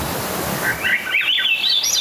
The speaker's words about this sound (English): That's the early morning call of a Swainson's thrush, a sound that means spring in the coniferous forests of Southeast Alaska, where in May, evergreens like the Sitka spruce produce downy tufts of new growth at the end of their winter dark branches.